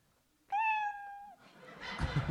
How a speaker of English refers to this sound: You know your 60 seconds is up, performers, when you hear the sound of a kitty.